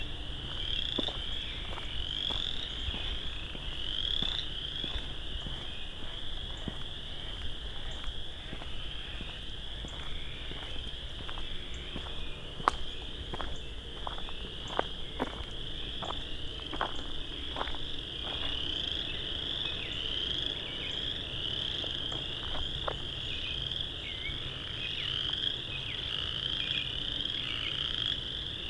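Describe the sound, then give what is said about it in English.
A dense chorus of tree frogs calls continuously for the whole stretch, a loud, high, shimmering trill punctuated by scattered sharp clicking notes, with no voices. “I think it's a species of tree frog.”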